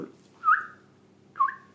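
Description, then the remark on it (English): A played-back recording of a bird call: the bird calls twice, each a clear, mid-pitched whistled note with a slight upward bend, separated by about a second of quiet. No one speaks. “That specific type of bird.”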